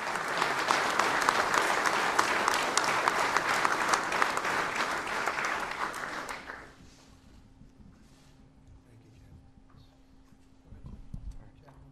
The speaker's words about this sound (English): President Trump among those applauding David Bellavere.